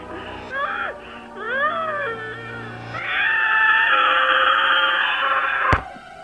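A man screams over a thin, tinny phone line, first in short rising and falling wails, then one long, loud, strained scream that cuts off with a sharp click.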